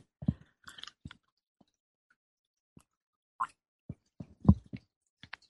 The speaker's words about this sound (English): And take a sip of my tea here.